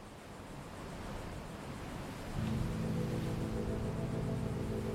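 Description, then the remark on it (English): Steady wash of ocean surf rolling in at night, a constant broad rush with no voices, joined about halfway through by a low, steady droning hum underneath. “We're back at the ocean, this time at night.”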